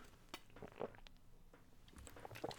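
Someone takes a few quiet sips of water, with soft slurps and faint clinks of a glass scattered over about three seconds, no talking.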